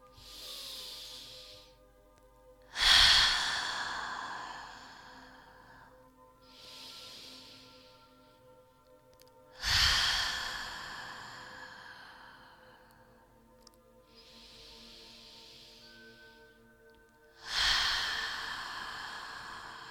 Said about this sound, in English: Let's go for 5 deep breaths, actually, so I can recalibrate.